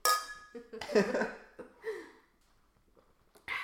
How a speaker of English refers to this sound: Anyway, let's clink and let's try the drink. Clink.